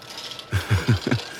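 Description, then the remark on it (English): An old office photocopier, jammed with paper while documents are being scanned, strains mechanically, giving four rhythmic grinding clunks with low thuds over a steady machine hum. No one speaks. “It sounds like you're dealing with a paper jam.”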